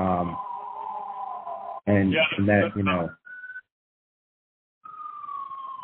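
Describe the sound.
An ambulance siren wails outside in long steady tones, briefly interrupted by a burst of talking, then returns with a slowly falling pitch.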